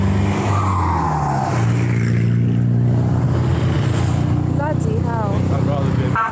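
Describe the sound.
An ambulance swerves past people walking at night along a road with no pavement in Suesca, Colombia, its loud engine drone sweeping down in pitch as it speeds by, with brief voices near the end.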